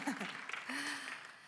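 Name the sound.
big round of applause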